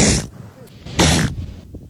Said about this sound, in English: That's a seal sneezing. That's a sneeze.